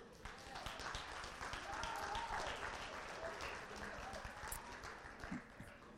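A church audience, standing, gives the Lord a hand clap in a sustained burst of dense, steady applause that lasts the whole clip, with faint voices mixed underneath.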